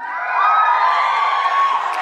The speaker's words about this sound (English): You're cheering for yourself? You have a bunny man running around. How dare you? An axe-wielding bunny man, you're cheering.